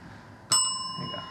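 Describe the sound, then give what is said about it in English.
A single bright bell is struck once, ringing with a sharp attack and clear sustained tones that slowly fade over the next second, fairly loud against a quiet background. “And then hit the bell.”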